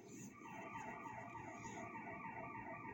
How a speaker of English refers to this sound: You hear that siren. I don't know if you hear that siren that's going on right now. I don't know what that's for. It could be for anything. Somebody got shot. Somebody got sick. Somebody got a heart attack. We just don't know.